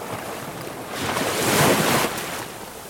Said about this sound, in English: scan the rest of your body to ensure that all of it is in the same deep, relaxed rhythm of the waves crashing against the ocean, against the shore.